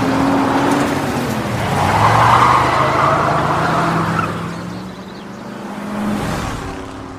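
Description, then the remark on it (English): A car's tires screech loudly over a steady engine roar as the car swerves hard to make a highway exit on the way to Knoxville, the squeal swelling for a couple of seconds before easing back into road noise. “And then she screeches to make the exit”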